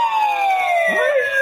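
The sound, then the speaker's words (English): A slide whistle glides steadily downward in pitch in one long, loud, unbroken tone lasting about a second and a half, with a brief low warble partway through. “That's for the sliding whistle.”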